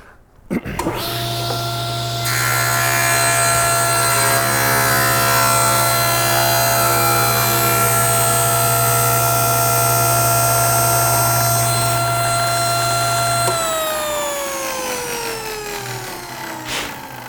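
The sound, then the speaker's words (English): The motor of an old Paramatic woodworking machine starts up and runs with a steady, loud, even hum and whine for about twelve seconds, then switches off and winds down with a falling pitch. “You hear the purr of that motor? That's a sweet motor.”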